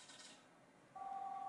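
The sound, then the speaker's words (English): After a brief stretch of faint hiss, a steady electronic telephone dialing tone switches on about two-thirds through and holds unbroken to the end, clear. “Phone call.”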